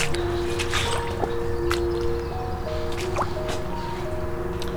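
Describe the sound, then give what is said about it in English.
Wet, sucking squelches of footsteps in swampy mud at Edge Lake Park on May 1st come at an irregular pace, with soft drips between them, over a steady low hum of tonal background sounds. “As you might be able to hear, I'm in a very muddy area. Almost a swampy.”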